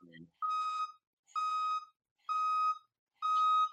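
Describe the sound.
A dump truck sound effect: four loud, evenly spaced electronic beeps at a steady mid-high pitch, like a reversing alarm, after a brief low voice at the start.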